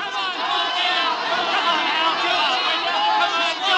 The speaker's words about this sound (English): Then came a night, long after, a nightclub in Hollywood, the crowd yelling.